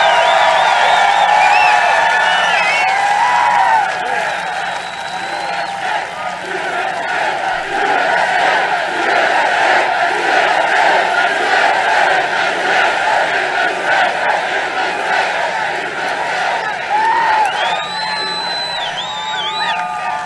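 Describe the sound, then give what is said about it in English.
A large crowd roars continuously for about twenty seconds, with layered cheering, whoops and rising shouts merging into a loud, steady wall of voices and rhythmic chanting. “That's a crowd.”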